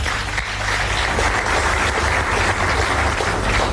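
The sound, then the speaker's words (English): An audience at the Kharwastan Civic Association's 50th anniversary in Chatsworth, south of Durban, applauds steadily for several seconds, a dense, even wash of clapping that holds at a fairly loud level throughout, with no voices over it. “Ladies and gentlemen, I think that deserves a round of applause.”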